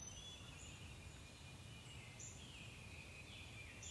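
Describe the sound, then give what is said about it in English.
A quiet outdoor morning ambience: faint calls and chirps of birds and animals waking up drift over a steady low rumble and hiss, with no one talking. “The animals and birds waking up.”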